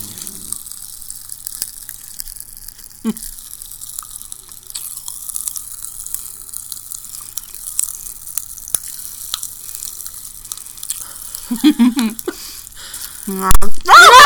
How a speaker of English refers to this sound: Alright, we're gonna have some Pop Rocks. Alright, here we go. You ready? Okay, just pour some in. Yeah, not the whole thing. Don't do the whole thing.